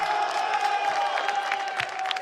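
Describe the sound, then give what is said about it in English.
A small crowd cheers and claps in a steady, moderately loud wash of noise, with scattered sharper claps and a faint sustained tone running underneath throughout. “I know it's a small crowd, but it feels good, so I'm very happy to be here.”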